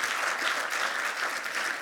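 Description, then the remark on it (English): Audience applause, a steady wash of many hands clapping at once, sustained and fairly loud throughout with no voices standing out above it. “And that's not just me trying to get applause.”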